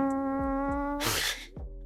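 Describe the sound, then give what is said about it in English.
A long, buzzy fart sound with a steady droning tone, ending in a sharp, hissy burst of air and a short sputter. It is loud, and nobody speaks. “That's a good fart.”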